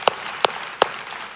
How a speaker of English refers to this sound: So how, we can clap for that. I'll clap for that. Come on now, it's the gospel.